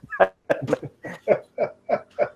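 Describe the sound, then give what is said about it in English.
Human voices imitate owls hooting together, a layered chorus of about eight short, rhythmic hoots in quick succession, moderately loud with no other talking. “You hear very far down the pathway, down that tunnel where you were about to go down, you hear a very faint hooting sound, but it's like multiple mouths hooting at once, like hoo, like imagine five owls in a bag.”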